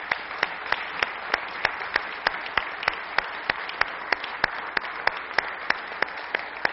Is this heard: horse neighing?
no